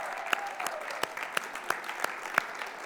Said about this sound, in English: Would you stand a moment so we can cheer and welcome you? Welcome.